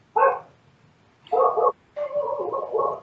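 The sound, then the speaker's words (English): A neighbor's dog barks three times with short pauses between; the first two barks are brief and sharp, the last longer and more drawn out. No one speaks. “Okay, neighbor's dog confirmation about Mars.”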